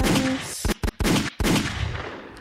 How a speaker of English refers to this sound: Gunshots from my nigga